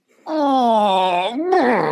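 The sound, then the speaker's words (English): A voice imitates a disappointed 'wah-wah' sound: one long, drawn-out tone sliding slowly downward in pitch, then a shorter wobbling note that bends up and drops again, loud and alone. “can you do a boob sound for disappointment?”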